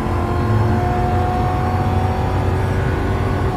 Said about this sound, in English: And it's not even that good of an engine.